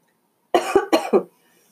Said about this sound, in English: Ooh, I think I'm going to have to take a little bit of a break, and I'll be back because this lingering cough is not going away. So give me a second, and I'll be right back.